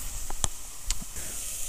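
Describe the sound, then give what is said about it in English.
Onions sizzle steadily in a frying pan, a continuous bright hiss broken by a few sharp crackles and pops. No one speaks. “Can you hear that? That's actual onion sizzling away in my pan.”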